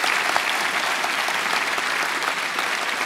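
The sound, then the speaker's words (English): An audience claps steadily for two guests as they are welcomed, a dense, even wash of applause that holds at a constant level throughout, with no voices standing out. “They deserve another clap.”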